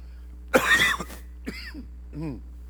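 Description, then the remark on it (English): A loud, harsh cough bursts out, followed by a couple of shorter throat-clearing grunts with brief pauses between them, over a steady low hum. “I've got a cough drop and water both. Right now, neither are working.”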